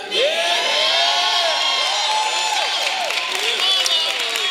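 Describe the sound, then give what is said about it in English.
A church crowd of many voices cheers and whoops continuously, with scattered shouts and some clapping, loud and sustained for the whole few seconds, giving the preacher permission to continue preaching. “Well, that was actually a minority of the crowd.”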